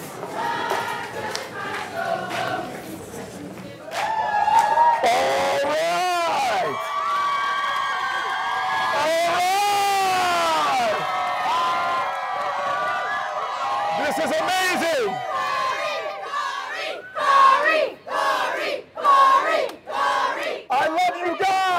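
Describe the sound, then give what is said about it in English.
A crowd of about 50 people outside cheering and chanting a senator's name before a march, loud, overlapping voices that start after a few quiet seconds, then hold steady before breaking into choppy, rhythmic bursts of shouting near the end. “You have about 50 people outside. Okay. Cheering your name.”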